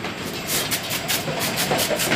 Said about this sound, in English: Right here, the scanner is looking at the materials as they come by, and when it sees a clear plastic, like a clear plastic water bottle, it hits it with a puff of air, and you can hear it.